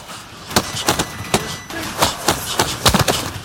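A rapid, uneven flurry of about ten sharp, heavy punches thudding home in a fistfight, each a loud smacking impact, with no voices between the blows.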